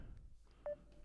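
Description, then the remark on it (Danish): A short electronic chime from an incoming Facebook call, one bright mid-pitched tone that briefly swells and then trails off into a faint thin hum over low background noise. “Og det er sådan en irriterende tone, når der bliver ringet fra...”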